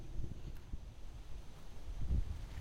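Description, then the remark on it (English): Gusty wind buffets the microphone outdoors on a steep slope, producing low, uneven rumbling bursts with a stronger gust near the end; no one speaks. “It's also a little windy, so it's kind of... feels adventurous.”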